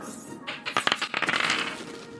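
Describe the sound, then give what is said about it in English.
A twenty-sided die (d20) clatters and rolls across a hard surface, a quick burst of sharp clicks and taps that settles into a brief rattle before stopping. It is rolled to see if a character is still taking acid damage. “Roll me a d20, see if you're still being acided.”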